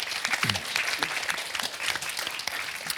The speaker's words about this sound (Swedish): Tack. Tack så mycket. En applåd.